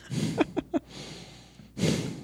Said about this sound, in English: he'll get annoyed that I'm annoyed at the breathing